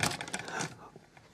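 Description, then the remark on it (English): A camera gets bumped by accident, producing a quick, fairly loud burst of rattling, clattering knocks that lasts under a second before settling into quiet. “I think I just knocked the camera.”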